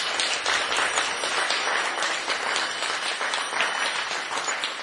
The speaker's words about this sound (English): And we'll just do a quick round of applause for her.